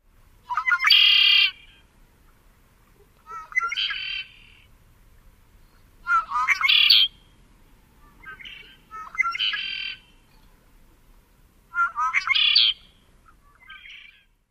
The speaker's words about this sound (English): While this classic song of the male red-winged blackbird is distinctive and easy to learn, red-winged blackbirds make lots and lots of different sounds.